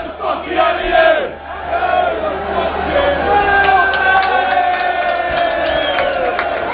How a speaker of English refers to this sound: A little bit of banter going around here between Crusaders and Wolves fans. As Matinho prepares for his free kick here.